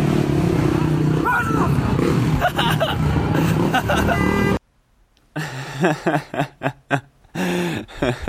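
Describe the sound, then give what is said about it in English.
Loud motorcycle engines roar as about 15 motorcycles ride along the street through a scare zone, horns honking over a noisy crowd, then the sound cuts to a brief silence before people start talking. “the motorcycles started coming by, and, like, the whole Purge scare zone was coming up the street, you know, honking their horns”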